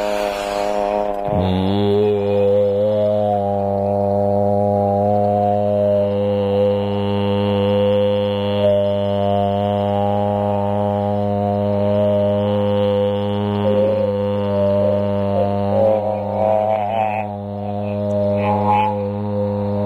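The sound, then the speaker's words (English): A deep, buzzing vocal drone, made with the mouth on a radio show, starts after a moment and holds one steady low pitch for nearly twenty seconds, rich in overtones, with only slight wavering in timbre and no pauses. “That's how you do a drone, my friend.”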